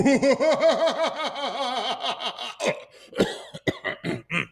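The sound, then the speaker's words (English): A loud fit of coughing: a rapid rhythmic run of about eight hoarse, voiced coughs, then a few sharper, raspier hacks toward the end, with no talking. “Need a cough drop?”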